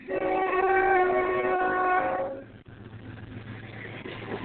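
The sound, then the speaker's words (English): A Union Pacific freight train's horn blares a loud, sustained multi-tone chord for about two seconds, then cuts off, leaving the heavy rumble and rattle of rail cars rolling past on the track. “UP is coming right by the track.”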